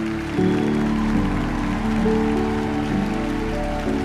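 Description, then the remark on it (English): Steady, dense applause from an audience, a continuous crackle of many hands clapping at an even loudness for several seconds, with a faint hum of tones underneath. “And now I'm going to stand up here awkwardly because I want to bathe in your empathy claps.”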